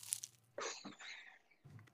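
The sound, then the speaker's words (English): A crisp crunch of someone biting into a homemade Rice Krispie bar topped with melted chocolate chips, with a couple of short crackly bursts of chewing following, quiet. “You hear the crunch?”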